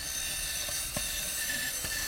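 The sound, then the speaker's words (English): A power drill whirs steadily for about two seconds as a hex head bit, the kind used to drive screws, spins against a wooden board in an attempt to drill a hole in it, with a few faint ticks and knocks over the constant motor noise. No one speaks. “Now, if I want to drill a hole in this board, am I going to use this bit?”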